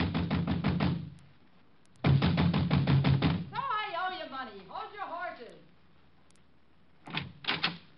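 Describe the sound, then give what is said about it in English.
Rapid, loud banging on a door in a village comes in two quick drumming bursts, then a voice calls out briefly before a few more hurried knocks follow. “I was soon banging on a door there like a drummer playing Bob.”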